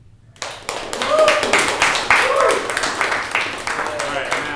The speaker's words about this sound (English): Okay, round of applause for Vermontre Pals.